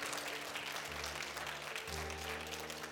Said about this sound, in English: If you're the song says, if you're happy and you know it, would you clap your hands? Come on, if you're happy and you know it, would you clap your hands?